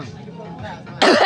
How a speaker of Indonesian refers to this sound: Biasanya harus batuk, Bang. Coba lu batuk. Kasih batuk dulu untuk amuba. Batuk. Kasih batuk, kasih batuk.